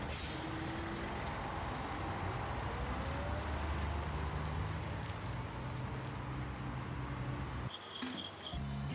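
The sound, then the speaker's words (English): Steady, loud rumble of a bus engine during a ride, with low droning tones and shifting pitch as it moves, then a brief hiss and beeping near the end. “Bus, bike, or walk? Bus.”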